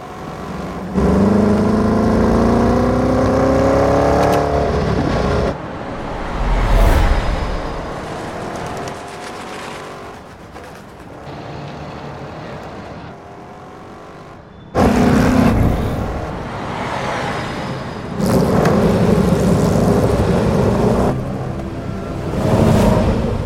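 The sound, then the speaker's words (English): A loud engine of the original Mercedes 722 racing car, which won the Mille Miglia, revs hard, its pitch climbing and falling through several bursts as it passes by, with abrupt breaks between passes and no talking. “Mercedes have been still using, up until very, very recently, the original 722 race-winning car.”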